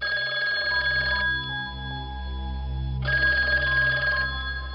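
A telephone bell rings in two bursts, each lasting over a second with a short pause between, loud with no one speaking.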